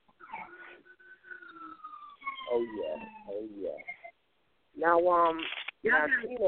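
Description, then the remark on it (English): Police sirens wail outside in a small town with long falling tones, then a louder, fast warbling yelp that breaks off briefly before resuming, sounding strong. “Now y'all gotta excuse those sirens.”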